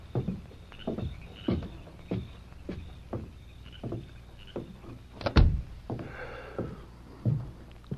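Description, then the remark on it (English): Steady footsteps thud across a floor, then a door shuts with one sharp bang, followed by a few softer steps and faint rattling. No one speaks. “Who was at the door?”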